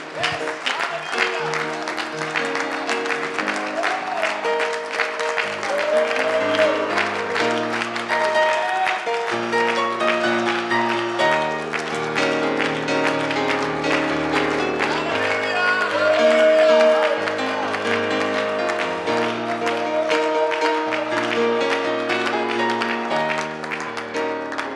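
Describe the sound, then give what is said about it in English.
A church audience applauds the Lord steadily for about twenty-five seconds, a dense wash of clapping with a few scattered whoops, over sustained keyboard or organ music playing chords throughout. “Can we just give the Lord another big round of applause?”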